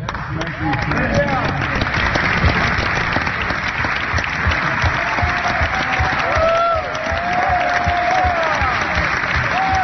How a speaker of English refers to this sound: James Clyburn from South Carolina, they actually turn to the media and start applauding the media, which just demonstrates exactly what this is.